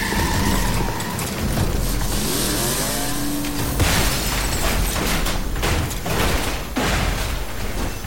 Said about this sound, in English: Switching focus, I hurried into the distant chamber, where the clamor of battling metallic giants rang out.